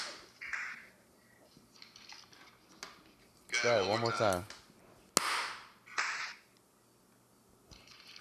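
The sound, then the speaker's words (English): A person claps over an online call to test the audio delay: a few sharp, crisp hand claps ring out one at a time at irregular intervals, separated by stretches of people talking and a brief louder voiced sound in the middle. “A bunch of claps in there.”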